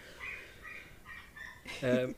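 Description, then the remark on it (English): The next-door neighbours' dog barks through the wall: a few muffled, higher yelps followed by one louder, fuller bark at the end. “Whose dog is that? It's our next door neighbors. I can't believe you can hear them through the wall.”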